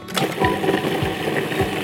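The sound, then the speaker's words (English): A blender motor whirs steadily at a loud, even pitch, with rhythmic chunky thumps as cumin, coriander, cayenne pepper and olive oil churn into a paste to spread over a bird. No one speaks. “And now I'll blend it into a paste.”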